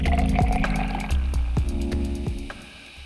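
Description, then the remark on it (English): Liquid glugs and splashes as it is poured into a glass, with bubbly gurgles rising in pitch as it fills, steady for a few seconds. “So sit back, pour yourself a drink, and listen in.”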